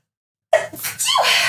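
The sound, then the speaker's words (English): A single loud sneeze bursts out abruptly after a moment of silence, followed by a short breathy, hissing tail. “Bless you.”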